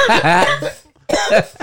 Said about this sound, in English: Oh my God, yo. I turned my mic around and coughed so hard. Oh my God.